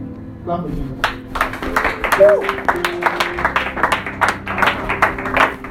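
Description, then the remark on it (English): An audience claps for Jesus in a steady, irregular patter of sharp hits that keeps going for several seconds, over a low sustained musical drone and a murmur of voices. “Clap for Jesus.”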